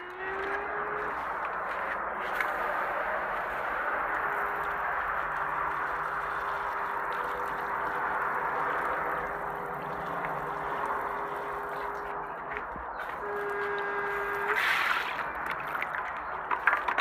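Water poured steadily into a potted cactus, a continuous splashing trickle lasting the whole stretch, with a faint steady hum underneath and no talking.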